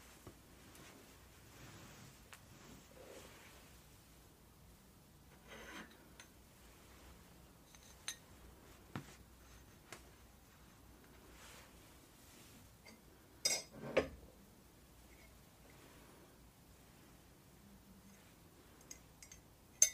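Light ceramic and metal clinks and knocks as a mug, a small plate and a water kettle are moved aside on a surface before making tea, with scattered taps and a brief cluster of louder clatter, without talking.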